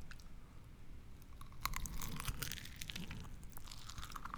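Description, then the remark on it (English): Wet crunching as someone chews an orange slice that was soaked in a cocktail and folded in half, steady bites with crisp crackles and moist squelches, no talking. “Now fold that orange in half and eat it.”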